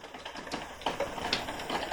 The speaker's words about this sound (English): No, it's just like raining like crazy in Jersey, and like I did not even know what that sound that was coming through my...